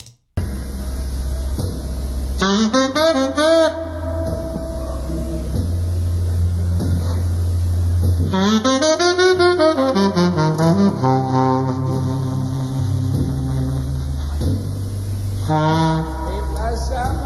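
A tenor saxophone plays a short phrase, then holds a long, full note with a wide, slow vibrato over a steady low bass accompaniment before moving on.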